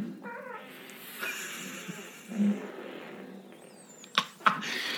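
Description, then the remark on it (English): A long, drawn-out recorded fart sound plays from an Alexa smart speaker, buzzy and sputtering with a rasping low rumble, ending in a couple of sharp pops. “Here's fart noise. Make it louder, Alexa.”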